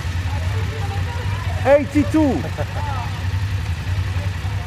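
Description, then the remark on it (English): A group of BMW 850 GS motorcycle engines idles at the International GS Trophy in a steady, low rumbling drone that runs throughout, with a man briefly calling out partway through over the continuous engine noise. “Is there anything more evocative than the sound of a group of BMW motorcycles?”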